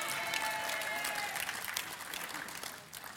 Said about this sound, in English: Thank you for that incredible response and excitement. Thank you for that cheer and the clapping and the shouting. I could feel it.